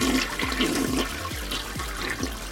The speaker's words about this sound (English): I just want a toilet sound. Give me a toilet flushing sound, and I'll be the most happiest person ever.